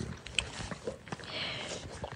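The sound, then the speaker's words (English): A pet pig grunts and snuffles in a run of short, rough, breathy bursts with a few sharper snorts, fairly quiet and uneven, with no one speaking. “She's got a pet pig. Yeah, it did sound like a pig.”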